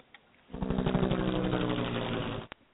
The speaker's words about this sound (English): There's another one. I bet that helicopter has something to do with the murder. Well, someone in the helicopter is looking for something, all right.